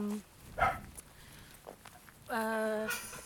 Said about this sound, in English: This is my neighbour's dogs.